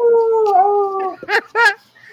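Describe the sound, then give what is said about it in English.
A wolf howl: one long, steady, mournful note, then two shorter howls that swoop up and fall away. Loud, with no one talking. “I can play the wolf.”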